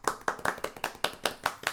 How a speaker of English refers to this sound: Golf clap, thank you.